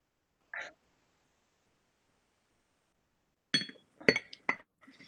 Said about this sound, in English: Let me take a sip on this first.